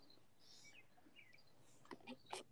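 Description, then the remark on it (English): Faint birds chirp with short high tweets scattered over a quiet outdoor background, birds that have nested in a kitchen porthole, followed near the end by a few brief, louder bursts of noise. “But somebody's got some birds going on in the background on their shit.”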